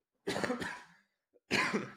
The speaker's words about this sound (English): Sorry, I need to cough.